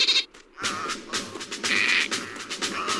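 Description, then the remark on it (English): Voice actor Frank Welker, voicing a dolphin, imitates it with squeaky, bleating chatter that is said to mean 'do you want fries with that'. The chatter warbles for a few seconds and breaks into a brief high whistle, fairly loud and without any ordinary speech. “And I play this one too because you can actually tell Frank Welker as a dolphin is saying, do you want fries with that in this bit here?”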